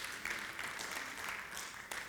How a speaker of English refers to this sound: Can we do better than a golf clap? Come on, let's do a soccer clap. Come on.